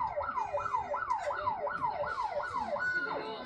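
An ambulance siren wails in quick, repeating rising-and-falling sweeps, loud, over a low rumble of traffic, with the final sweep holding briefly at a high pitch.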